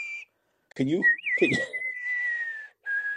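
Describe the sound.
A person whistles a drawn-out, sliding melody in the style of a western film theme, fairly loud, with a couple of brief voiced sounds breaking in near the start.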